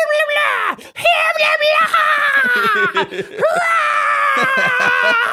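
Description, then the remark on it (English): A single voice imitates a crowd's screaming and cheering, giving loud, high-pitched sustained whoops with rising and falling glides and brief breaks, continuous for several seconds. “They're working themselves up into a frenzy as they all start to scream and cheer.”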